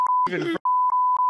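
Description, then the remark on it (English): A steady high-pitched censor bleep tone runs almost continuously over a redacted apartment buzzer number, briefly interrupted by a short burst of muffled speech partway through. “Redacted.”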